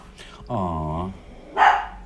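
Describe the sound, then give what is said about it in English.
A dog gives a drawn-out, whiny bark followed by a short, sharper bark about a second later, both clear against a quiet background. “What happened? Dog.”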